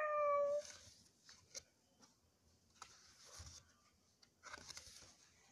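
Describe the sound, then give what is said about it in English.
A voice imitates a small green cat purring while reading Andy Warhol's book Colors: a brief, loud cat-like tone at the start, then a soft, uneven run of low fluttering clicks and rolling rasps that fades in and out. “Small green cat just purrs.”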